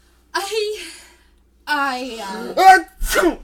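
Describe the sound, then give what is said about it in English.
Two loud sneezes, one after the other, as Mr. Barker sneezes and Ophiuchus sneezes too, each preceded by a drawn-out, breathy vocal build-up and ending in a sharp, noisy burst. “Every time Mr. Barker sneezes, Ophiuchus sneezes.”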